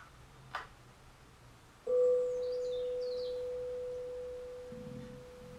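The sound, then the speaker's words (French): A meditation bell is struck once, giving a clear, steady mid-pitched tone that rings on and slowly fades for several seconds. A brief click comes before it, with faint bird chirps. “Les vibrations sonores, l'élément du vent qui prend la forme de la cloche.”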